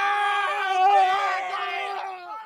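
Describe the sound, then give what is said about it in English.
A person screams in fear in the distance, one long, high, wavering cry held for a couple of seconds before trailing off slightly at the end, with no talking around it. “You hear a cry off in the distance. You hear someone shouting in fear.”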